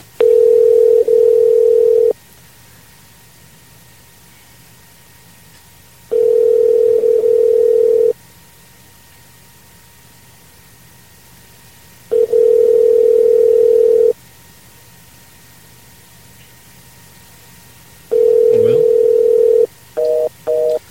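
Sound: telephone busy signal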